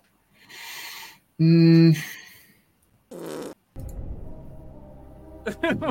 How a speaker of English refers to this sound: The fart really helped. Thank you.